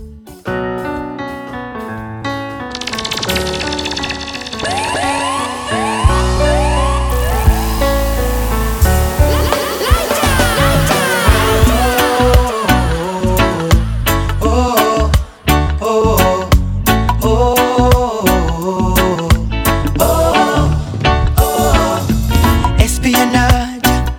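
A reggae song plays loudly and steadily, opening with a melodic intro before a heavy bass line and rhythmic backing kick in a few seconds later and carry on throughout.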